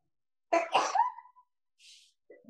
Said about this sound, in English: Oh yeah, I have to sneeze.